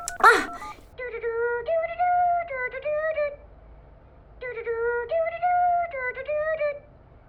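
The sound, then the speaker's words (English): A cell phone, left behind by its owner, rings with a bright electronic melody, the same short tune playing twice in a row, clear, after a brief rustling burst at the start. “What's that? It's Grandma Mel. It's his cell phone.”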